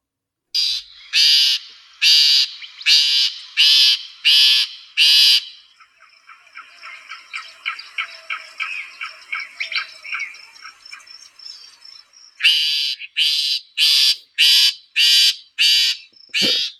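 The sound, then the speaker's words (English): Loud, harsh calls of a songbird repeat in an even series of rasping notes, give way to a fast chattering run, then return as the same steady calls. No voices. “So that's kind of the songs, but you get to the calls. That really is distinctive, and I think it fits the behavior of this bird.”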